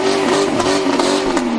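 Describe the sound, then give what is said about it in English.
Engines of a small motorcade of all-white cars carrying about 10 Klan members rev loudly as they drive past counter-protesters at a park, a steady droning roar with a slightly wavering pitch that fills the whole short stretch, with no voices. “Driving their engines past the counter-protesters, about 10 Klan members parked at an adjacent pavilion with two carry-out pizzas in hand.”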